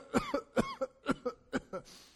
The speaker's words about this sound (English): And he hears him coughing.